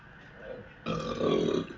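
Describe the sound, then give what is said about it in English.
A man lets out a loud, deep belch that starts abruptly after a quiet moment and rumbles on for nearly a second. “…, thanks for tuning in, but you're belching, bro.”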